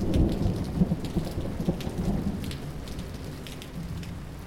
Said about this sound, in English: It hasn't once stopped raining. All week. Not for a moment.